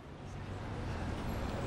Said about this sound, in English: I'm walking down 8th Avenue in New York City. Cars are going by,